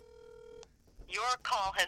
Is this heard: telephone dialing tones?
yes